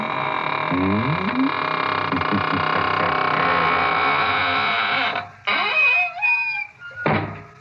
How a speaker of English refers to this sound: And now it's time to close the squeaking door, so good night.